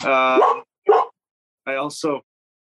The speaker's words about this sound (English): Well, we got a 9-month old lab that's just excited about everything. Everything. So he wakes up fired up, ready to go.